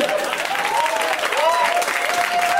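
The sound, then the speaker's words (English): An audience claps steadily, a dense, continuous patter of many hands at even loudness throughout, with a faint wavering tone riding underneath the applause. “You can clap for me.”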